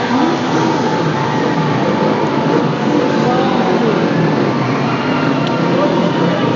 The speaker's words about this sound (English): There's some motorcycles coming by for the Purge.